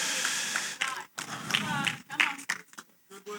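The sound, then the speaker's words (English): An audience applauds in a dense, steady wash of clapping, with voices calling out over it before it thins and breaks up near the end. “I received that applause for myself.”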